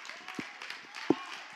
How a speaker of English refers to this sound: Thank you for your little golf clap.